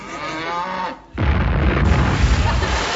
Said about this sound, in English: Oh, at last. One of the cows has burst. Grab a sponge and I'll get you a glass of milk.